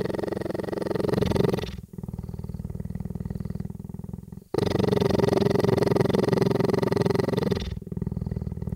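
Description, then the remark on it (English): A cheetah weighing around 180 pounds purring loudly, a deep continuous rumble that alternates between breathing-in and breathing-out phases in a steady cycle, with no talking. “I recorded the cheetah, the huge and very kind cheetah”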